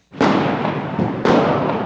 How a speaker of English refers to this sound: Stun grenades and tear gas canisters exploding across the streets of central Athens. Chaotic scenes as riot police battle protesters.